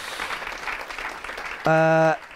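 An audience claps in a steady, dense wash of applause, then a loud, low buzzing tone cuts in for about half a second over the clapping.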